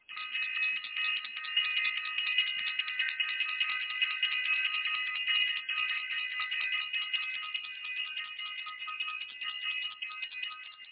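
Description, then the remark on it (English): A bell rings continuously for about eleven seconds, a bright, high metallic tone with a rapid shimmering flutter and steady loudness, with no voices. “I want to ring the bell for self-invested and the astrology class in self-invested.”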